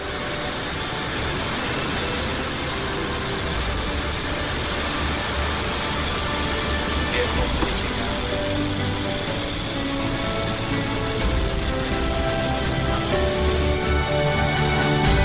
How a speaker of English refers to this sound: 10, 9, 8, 7, 6, 5, 4, 3, 2, 1, engine full power, and liftoff, Falcon 9, Falcon 4, 10.